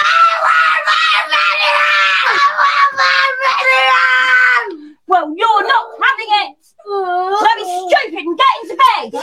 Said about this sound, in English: Why is it so funny when people scream in British accents?